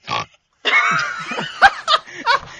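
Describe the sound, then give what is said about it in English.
A voice imitates Hordak from She-Ra with gurgling, pig-like grunts: a short burst, a pause, then a sustained throaty rumble broken by several sharp snorting bursts, loud. “It was just gurgling noises.”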